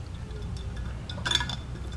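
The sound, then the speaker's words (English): Ice cubes clink against a glass holding a drink in a short cluster of bright taps, over a low steady background rumble with no talking. “You're chingling in ice. Sorry, I got ice in mine.”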